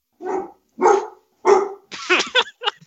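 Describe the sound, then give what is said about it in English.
A dog barks three times in a steady rhythm, loud, then breaks into a quick run of higher, yelping barks. “Even the dog agrees.”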